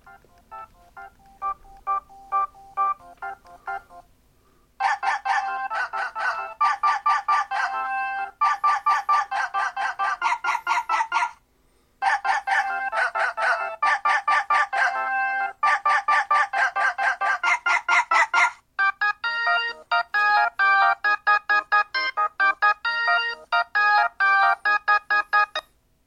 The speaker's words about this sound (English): Here's my favorite ringtone. Playing in just a sec.